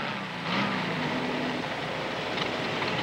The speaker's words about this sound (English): You hear this wonderful sound of the Volkswagen coming in, and it turns and it goes away.